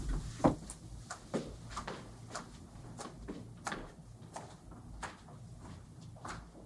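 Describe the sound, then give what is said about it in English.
A door opening: a run of sharp, irregular clicks and clunks, like a latch and hinges rattling, fairly quiet, with no one speaking. “Like, which door is going to open?”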